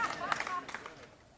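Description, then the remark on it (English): An audience claps together, a dense patter of hands mixed with raised voices calling out, loudest at first and then fading over about a second and a half. “One claps, everybody claps.”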